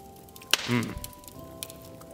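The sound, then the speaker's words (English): A single bright, sharp clink of glasses tapping together in a holiday toast, followed by a brief soft rustle before things settle into quiet. “So to that, I will say, cheers.”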